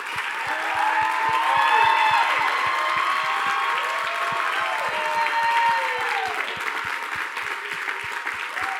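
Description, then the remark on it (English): An audience applauds steadily in honor of their pastors one morning, dense clapping with sustained cheering and whooping voices layered over it, loud throughout the full length. “So what I felt like we were just supposed to give an honor and a hand clap, but from our hearts this morning towards your pastors.”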